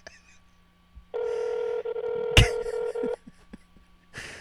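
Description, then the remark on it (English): A phone call to a friend rings out on the line: one steady, fairly loud ringback tone lasting about two seconds, broken by a sharp click, with quiet background noise before and after and no answer. “He's not answering.”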